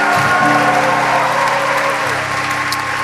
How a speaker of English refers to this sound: Okay, so you may go back to your seat. Clap for them as they go back to their seats.